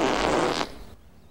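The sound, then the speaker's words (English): A single loud, raspy fart lasting just over half a second, made off screen by Olympia Dukakis's character in a film scene, then a quick fade into quiet room tone. No one speaks. “That time she just farts off screen.”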